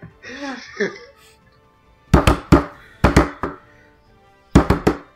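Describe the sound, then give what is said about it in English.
After a brief vocal sound, hands slap out a rhythmic beat on a desk, imitating 'dun-dun-dun-dun-dun' music: three quick bursts of sharp, loud thumps, each burst holding about three hits, with short pauses between. “I'm trying to do like the dun-dun-dun-dun-dun music with my hands.”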